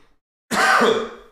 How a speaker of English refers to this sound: Sorry, I'm coughing.